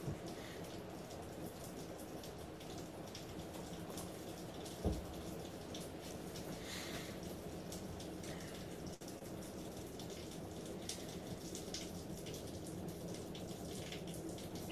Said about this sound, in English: Can you hear the rain? Oh, I do hear the rain